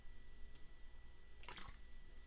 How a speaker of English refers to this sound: I was taking a drink of water. I wasn't trying to add emphasis to that point. I was just drinking water.